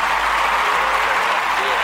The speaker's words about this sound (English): Let's give this brother a round of applause.